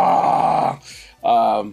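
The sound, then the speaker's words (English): A person vocally imitates the roar of pain of a character who has just been slashed: two loud, strained, harmonic bellows with a brief breathy gasp between them, no words spoken. “Slashed him, he roars out in pain.”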